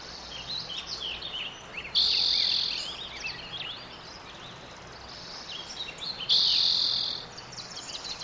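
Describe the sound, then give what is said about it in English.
A dense outdoor spring chorus of many birds chirping and singing at once, recorded in 2004 at Sugarloaf, with overlapping calls and two brief bursts of loud, sustained high trilling, over a steady background hum. “You can see how climate change is affecting the bird populations. You'll hear a nice, robust piece in 2004.”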